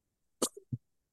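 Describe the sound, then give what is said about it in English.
A single sharp sneeze: a sudden hissing burst followed by a short voiced tail and a brief low grunt, all within about half a second, with silence around it. “Excuse me. Bless you.”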